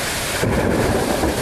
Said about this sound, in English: The rain falls in Baltimore.